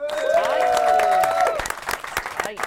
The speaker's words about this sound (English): 10 goals for Natalie Sawyer. Round of applause. There we are.